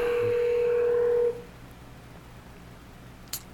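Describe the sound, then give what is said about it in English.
A telephone keypad tone sounds as one loud, steady beep lasting just over a second as a call is placed on a telephone, then cuts to a quiet hiss, with a brief faint click near the end. “We're going to do it via the phone.”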